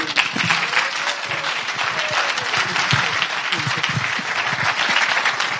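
Sustained applause from an audience, a dense, steady wash of many hands clapping at an even loudness for several seconds with no voices standing out.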